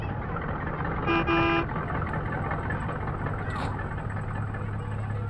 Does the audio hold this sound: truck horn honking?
yes